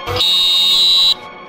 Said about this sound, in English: And somebody who's a teacher says they could not live without their electric handheld whistle. I'm like, what's this all about? So I went to YouTube. This is what it sounds like.